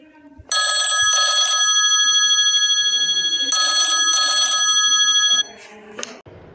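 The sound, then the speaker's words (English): A loud telephone rings in two long bursts of rapid metallic trilling, each made of two quick pulses with a short gap between them, then falls silent. “Oh my god, the phone call of today. Let's pick it up.”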